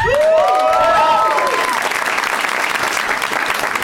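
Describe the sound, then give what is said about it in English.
A crowd applauds steadily for a few seconds to welcome a guest, with loud rising and falling whoops and shouts of cheering over the clapping at the start before easing into sustained applause. “There's a little less shouting.”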